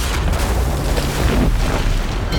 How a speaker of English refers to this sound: Ahead of him, two towering cedar trees bent toward him, threatening to fall, but they were the only way out of the thicket. Kono held his breath, turned sideways, and dashed between them. The two trees wobbled, then crashed to the ground.